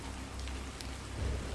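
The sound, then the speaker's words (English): Steady rain on a stormy night in Barbados pours down in an even, hissing wash, with a deep low rumble running underneath and no voices present. “Stormy Night in Barbados: Rainy Sleepy Story”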